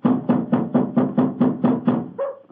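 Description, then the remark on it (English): A quick, even series of about eight firm knocks on the wooden door of an elephant house, fairly loud, followed by a brief different sound as the rapping stops. No voices. “We must have been knocking here for 5 or 6 minutes.”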